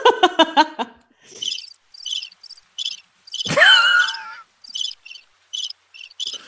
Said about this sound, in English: I don't even think crickets were warranted.